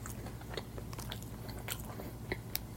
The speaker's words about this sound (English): crunchy, crunch, crunch.